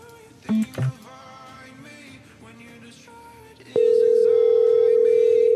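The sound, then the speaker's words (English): A phone line's tone: two brief low beeps, then a loud, steady electronic tone that starts partway through and holds to the end, with faint background chatter underneath. “My one rings.”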